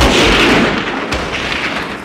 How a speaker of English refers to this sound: And then the music is gone. We cut to black. We hear the sound of a rifle bolt. And then you hear that gunshot in the black.